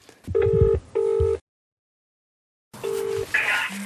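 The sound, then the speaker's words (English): A phone ringing tone as a call is placed, sounding in two quick double bursts, then a pause of silence, then another ring, clear with a faint background hiss. “Will I ring him? I ring him and then say, why are you saved as”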